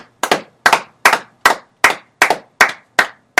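Eight sharp hand claps in a steady, even rhythm, each a loud, crisp smack with a short fading tail, and no voices underneath.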